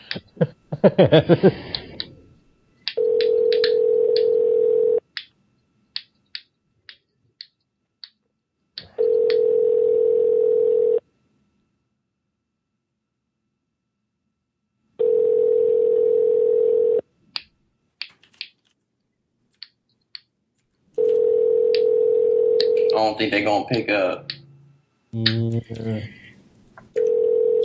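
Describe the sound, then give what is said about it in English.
An outgoing phone call rings: four steady, mid-pitched ringback tones, each about two seconds long, repeating every six seconds, with clicks and brief voices in between and near the end. “Think they gonna pick up? They have not picked up in a while.”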